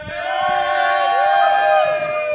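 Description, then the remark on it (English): A small but loud crowd at Pepito's Theater in Minneapolis, there to watch Alfred Hitchcock's Vertigo, cheers loudly, a burst of overlapping whoops and high shouting voices held steady for a couple of seconds before easing off slightly at the end. “We are at the beautiful Pepito's Theater in Minneapolis, joined by a small but loud crowd.”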